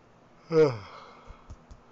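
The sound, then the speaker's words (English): A single short, voiced yawn with a falling pitch rises out of near silence, followed by a few faint low thumps in the background. “Yeah, excuse me for the yawning, okay?”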